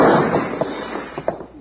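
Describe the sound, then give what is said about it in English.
A wash of crashing, rattling noise as a house's front window shatters, punctuated by three sharp gunshot cracks spaced unevenly over under two seconds; no one speaks. A shot also puts a hole in a dishwashing machine. “Bill, you shot a hole in my dishwashing machine.”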